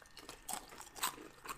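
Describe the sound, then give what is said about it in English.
Several crisp crunches of someone biting and chewing medium-heat beef jerky, coming in an irregular rhythm of sharp bursts with no talking. “You can hear that crunch.”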